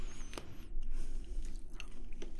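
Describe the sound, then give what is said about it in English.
Chewing frozen corn kernels, very cold, eaten one at a time: a few sharp crunchy bites early on, then softer wet squishy mastication continuing steadily, no talking. “It's like kind of crunchy, but it melts so fast in your mouth that it isn't crunchy at the end.”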